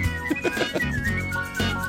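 A person whistles a gliding, tuneful melody over a steady instrumental music backing, the clear high whistle sitting up front and carrying the theme tune throughout.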